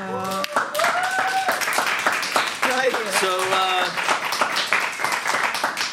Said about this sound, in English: But boy did they applaud in their own self-interest enthusiastically.